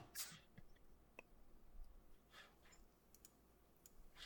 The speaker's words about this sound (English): Okay, I love the sound of the dice on this D&D thing. It sounds so good. I do. It sounds so good.